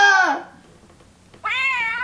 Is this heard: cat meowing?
yes